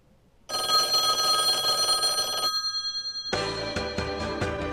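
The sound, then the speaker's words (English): A telephone bell rings in a loud, rapid metallic trill for about two seconds and then cuts off. After a short pause, a brighter, pulsing burst of sound follows. No one speaks. “I must be out before I'd pick up the phone.”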